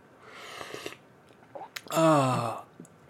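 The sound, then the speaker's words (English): A soft slurping sip of coffee from a cup on a Thursday morning in Japan, followed after a short pause by a loud, satisfied drawn-out vocal sigh. “I gotta take the sip. It tastes so good. I'm gonna take a little sip here.”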